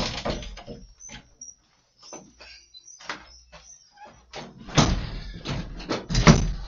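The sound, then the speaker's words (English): A door closes with a series of clunks and rattles, the loudest thuds landing near the end, fairly sharp against a quiet background. “Lock the door. Yeah, lock the fucking door.”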